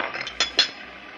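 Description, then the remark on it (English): Two quick, bright clinks of teacups and dishes knocking together as tea is being made, sharp and high-pitched, over a faint hiss with no voices. “I'll make us some tea.”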